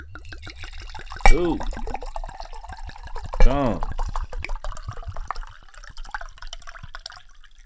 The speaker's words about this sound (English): It is time for us to pour up some of that wine. Pour it up.